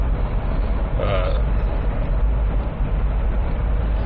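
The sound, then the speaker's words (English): Steady, low road rumble from inside a car being driven home from work, a constant droning hum with a brief faint squeak early on and no one talking. “So we're gonna give this a shot, a little solo podcast. Man in his car driving home from work.”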